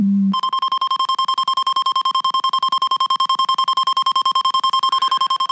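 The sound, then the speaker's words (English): A spaceship alarm sound effect blares: a loud, shrill electronic tone pulsing rapidly and steadily for several seconds, preceded by a brief low hum, with no voices. “The Falcon alarm.”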